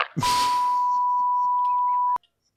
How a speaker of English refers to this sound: I'm gonna hang up. I don't have a hang up sound, but I'm gonna just play the beep.